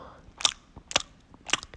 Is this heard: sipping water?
yes